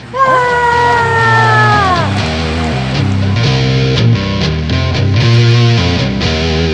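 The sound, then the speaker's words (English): A loud, sustained scream with a pitch sliding downward lasts about two seconds over a driving music track, which then carries on alone with a steady beat. “As we run screaming from the hellhounds into the next section.”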